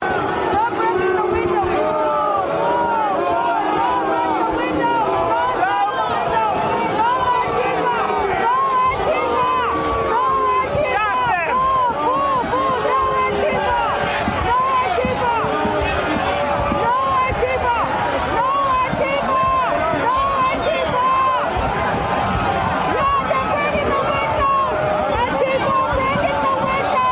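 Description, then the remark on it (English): A large crowd of Trump supporters boos and yells continuously, shouting "don't break the windows" and "no Antifa", with many overlapping voices forming a loud, dense roar that stays steady throughout. “Yeah, so you're hearing a Trump supporter saying, booing, all these Trump supporters booing, yelling, don't break the windows, no Antifa, no Antifa. You hear the crowd.”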